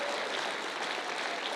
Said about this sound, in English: Clap your hands right now.